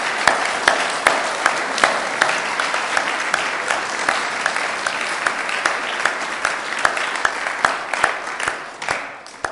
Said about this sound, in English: But I just think it'd be good for us to say a huge thank you, give a huge round of applause to the Bayston Hill Community Choir, who sung so well tonight.